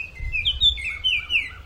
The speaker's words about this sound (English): she's back, but in a different state this time, and she has some beautiful songsters with her.